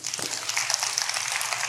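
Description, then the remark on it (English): An audience claps steadily, a dense, even patter of many hands at a moderate level that carries on throughout, with no voices over it. “Let's clap for that, y'all.”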